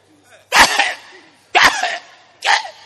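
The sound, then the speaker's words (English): A voice imitates a man's continued coughing: three loud, harsh coughs, each bursting out abruptly and trailing off, spaced about a second apart with short pauses between. “The coughing is not stopping.”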